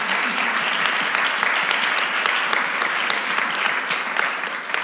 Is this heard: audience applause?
yes